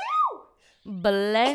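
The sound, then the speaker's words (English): A single loud sneeze: a quick breathy burst that breaks into a strongly voiced, tonal 'choo', preceded by a short gliding vocal sound and a brief pause. “Bless you. Many blessings.”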